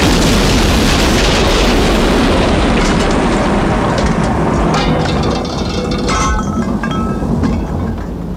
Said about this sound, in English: You're only supposed to blow the bloody doors off.